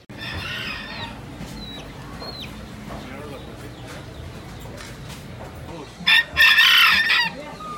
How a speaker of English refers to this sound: And we was they, the sounds of the gallos, the roosters, were in the background. It was pretty cool.